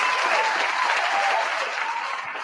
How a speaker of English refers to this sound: Shout out to my bitch, Dana Owens, Queen Latifah, for recognizing her partner at the BET Awards. Let me give her a round of motherfucking applause.